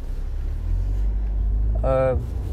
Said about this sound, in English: I'm going to work right now, so that's what you hear in my car.